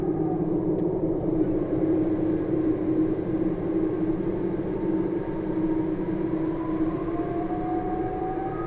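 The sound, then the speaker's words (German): A railway train rumbles steadily past, a loud continuous low roar with rhythmic wheel clatter and faint rising squeals, no voices present. “Und Autohupe, Eisenbahn, das ist sehr, sehr, sehr schön.”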